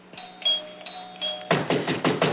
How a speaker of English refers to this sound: Finally! Why must he pound on the door?